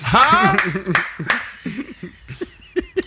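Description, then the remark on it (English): Laughter and chatter fill the opening, followed by several sharp, irregular hand claps, crisp smacking bursts spaced unevenly, with a couple of louder claps near the end. “The little clapping noise.”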